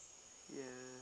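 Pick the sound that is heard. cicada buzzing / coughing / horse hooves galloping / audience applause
cicada buzzing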